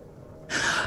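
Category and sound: human body sound, gasp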